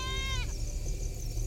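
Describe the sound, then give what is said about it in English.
A goat with a noose around its neck, in terrified panic at night, lets out a single loud, harsh scream that lasts about half a second and cuts off abruptly, leaving only a steady, noisy background rumble. “There's a split-second impression of gigantic bat wings and gaping jaws, and then the goat begins to scream.”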